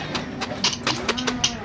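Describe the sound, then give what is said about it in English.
Cattle low in drawn-out, steady moos, with scattered clattering knocks and shuffling sounds throughout, as men load the cattle. “Stop those men from loading the cattle!”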